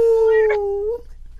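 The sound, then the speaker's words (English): A dog lets out one loud howl that holds a steady pitch for about a second, sags slightly lower and trails off into a whimpering whine. “I will say that we have an entire studio behind us, but I would almost prefer to have a dog behind me that I could high five at times.”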